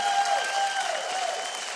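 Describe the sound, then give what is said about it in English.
Steady applause from a TV studio audience enjoying a live band, a dense wash of many hands clapping at an even, sustained level, with a faint tonal whistle or feedback line running through it. “And by the way, if you're wondering why this audience is clapping, part of it is because they're having a great time listening to the greatest band in America,”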